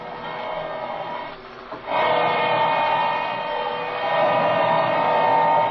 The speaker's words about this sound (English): This drill's getting awful hot.